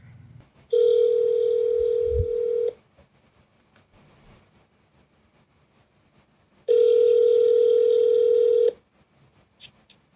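A phone-a-friend lifeline call ringing out: two steady electronic ringback tones, each about two seconds long, separated by a long quiet pause. Clear, with no one speaking.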